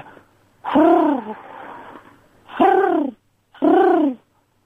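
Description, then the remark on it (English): A person imitates a South American pigeon with three loud, hooting coos: a long drawn-out first call, a pause, then two shorter ones in quick succession. No speech. “Oh, can I do you a South American pigeon impression, then?”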